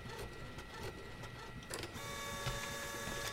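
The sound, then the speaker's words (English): A small printer whirs steadily, its mechanical hum shifting into a higher, tonal whine partway through as it prints out an ultrasound image, with no talking. “Printer works, too.”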